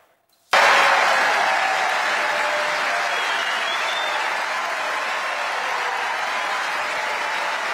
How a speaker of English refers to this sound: The audience cheering him on, President Joe Biden pumping up his fist in support.